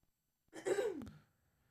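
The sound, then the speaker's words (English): A single deliberate throat clearing into a microphone, fairly loud, with a voiced rasp that slides downward and ends in a brief click, alone against near silence. “That time I had to like scream my throat clearing.”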